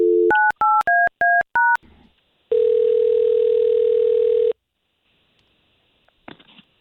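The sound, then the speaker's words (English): A phone number is dialed in quick touch-tone beeps, about seven short dual-pitched tones in a row, followed by a steady, loud ringing tone lasting around two seconds, then near silence with a faint click. “We're just going to get her on the line with the phone number that you gave us, and let's see if we can't get you guys talking, all right?”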